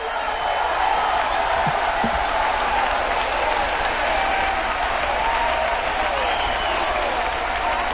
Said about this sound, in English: So clap your hands, and while you're clapping your hands, shout the name that is above all names. The name that hell trembles. The name that hell shakes when we call the name of Jesus. Come on, shout as loud as you can shout Jesus.